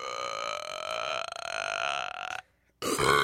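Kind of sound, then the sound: human body sound, a belch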